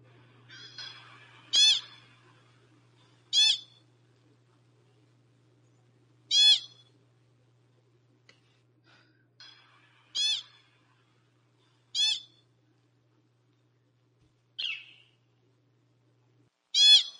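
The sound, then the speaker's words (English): A pika gives a series of sharp, high-pitched chirps and shrill squeaks, about eight short calls spaced a second or two apart, clear over a faint low hum. “But yeah, Chris, as you can hear, it's high pitched and there's some chirps and there's more like shrieks.”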